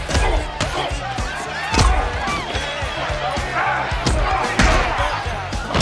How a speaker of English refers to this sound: listen to a couple of these like punches, these sound effects.